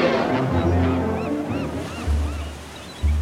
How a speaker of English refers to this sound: With a roar of freedom from a mighty voice, the giant liner stirs into life.